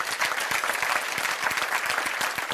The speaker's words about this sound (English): Is that the best clapping y'all can do? I think you can clap better than that.